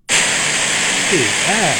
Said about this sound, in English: All right, here's purple or pink, I'm sorry.